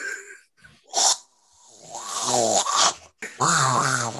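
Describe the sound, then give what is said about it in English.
A person imitates a Bigfoot, making a breathy huff followed by two long, rough, drawn-out growling moans, loud, with no words spoken. “do you want Bigfoot like moans and growls? Oh, baby, both, please.”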